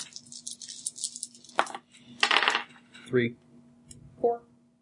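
Dice clatter and rattle across a hard table in a few quick bursts of bright clicking, followed by a couple of short spoken remarks.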